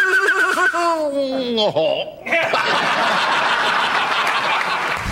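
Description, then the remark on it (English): A man's voice imitates an English horse whinny for a cartoon, a loud, wavering neigh sliding downward over about two seconds, followed immediately by an audience bursting into sustained applause and laughter. “That was my first voice in the cartoons. English Horse Winnie.”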